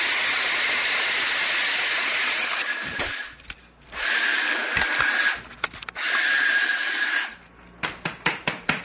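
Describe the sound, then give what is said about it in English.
A food grinder in a kitchen whirs loudly as it grinds Brazil nuts, pecans, hazelnuts and almonds for organic star bars, running in three long high-pitched bursts with brief pauses, then finishing with a series of quick short pulses. No one speaks. “Okay, so we're going to grind this up. This is going to be a little loud.”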